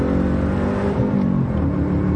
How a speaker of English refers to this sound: It's a lot of car for a 36-year-old, because I just went way too fast.